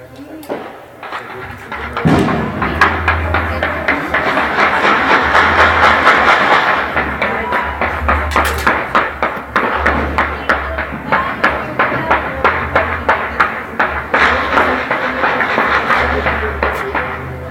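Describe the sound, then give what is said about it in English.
Distant gunshots fired into the air at midnight in Mexico, just outside a home across the border, crack out in rapid, irregular bursts. Dozens of sharp pops pile up over a steady low rumble of music and noise outdoors. “Those claps you're hearing, Rock, are gunshots.”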